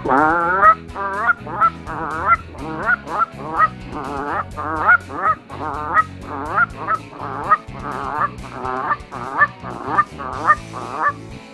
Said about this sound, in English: Canadian goose.